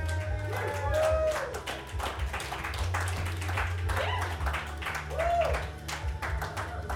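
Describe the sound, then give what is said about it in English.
An audience breaks into steady applause for a musician guest on a show, a dense patter of many hands clapping for several seconds, with a few rising cheers or whoops and a low hum underneath. “Can everyone give us a round of applause, please?”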